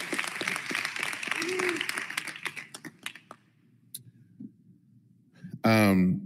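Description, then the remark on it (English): An audience gives a man another round of applause for his work, a dense, steady wash of clapping that thins to a few scattered claps and fades into quiet, before a voice suddenly starts speaking loudly at the end. “And so with that, I hope you would give him another round of applause for all the work that he has done.”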